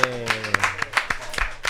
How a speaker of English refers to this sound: Welcome to the 200th episode. We made it. Thanks for showing up. Let's get a round of applause from the peanut gallery in the background.